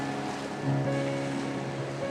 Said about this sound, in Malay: Inilah pantai yang anda idam-idamkan.